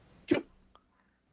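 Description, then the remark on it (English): A single sharp, loud sneeze during a sneezing fit, fading quickly, followed by a brief faint click, with no talking. “Job of achoo! Muting yourself. I'm so sorry.”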